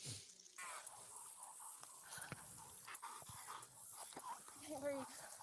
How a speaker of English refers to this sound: Listen to the dog.